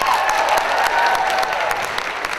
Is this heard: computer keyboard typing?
no